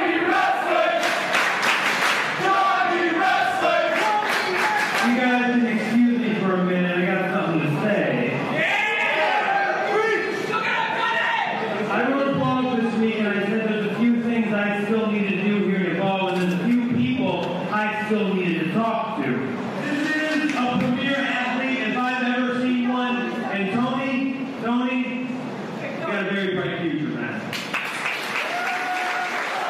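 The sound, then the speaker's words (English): A large wrestling arena crowd in Long Island roars and chants in rhythmic unison at the wrestler Johnny Wrestling for about half a minute, loud, with clapping and cheering swelling throughout and a burst of applause near the end. “Johnny Wrestling hears it from the crowd one more time here in Long Island.”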